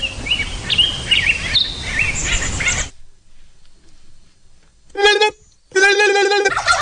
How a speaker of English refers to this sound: A turkey calling the wild turkey.